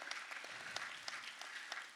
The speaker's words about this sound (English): Let's keep all those claps in 2024 as well.